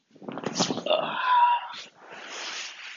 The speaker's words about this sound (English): She brought her dog in. She ran into my... The dog just jumped on my bed and just, like, left.